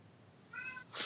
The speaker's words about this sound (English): There he is. What a good boy. I don't know if you can hear him. He is meowing in the other room.